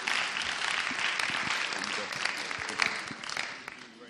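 A church audience applauds steadily to welcome a Bible teacher as he comes up, a dense wash of many hands clapping at a fairly even level for several seconds, with a few sharper individual claps standing out and no one speaking over it.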